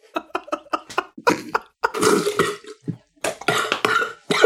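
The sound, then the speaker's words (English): A quick series of choppy mouth bursts turns into loud, wet spluttering as a man spits a mouthful of water out over his computer, followed by a few more coughing splutters. “Do not make me spit water all over my computer, man.”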